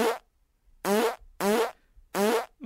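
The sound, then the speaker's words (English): A series of four loud, buzzy fart sound effects from a fart app on a phone, in quick succession, each a short blast with evenly spaced gaps, sounding synthetic, with no talking. “This fart app is not as good as the last one.”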